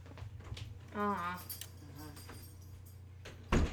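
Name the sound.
door shutting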